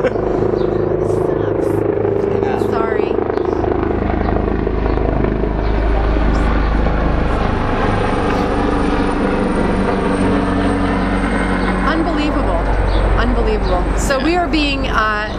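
A state police helicopter searching for someone flies overhead, its steady, loud rotor rumble and engine drone filling the scene without letup, with faint voices murmuring underneath.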